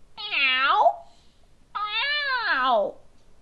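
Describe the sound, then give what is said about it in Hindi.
A person imitates a cat, letting out two drawn-out meows with a pause between them, fairly loud, each one rising and then sliding down in pitch. “… बिल्ली की तरह मिमियाया।”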